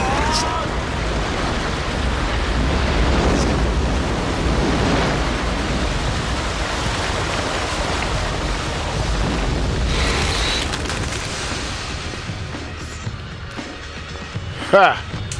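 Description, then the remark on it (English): Water pours down onto a fire with a steady, loud rushing hiss that fills the whole stretch, easing slightly toward the end before a brief sharp crackle. “Oh, he's going to knock the water in the fire.”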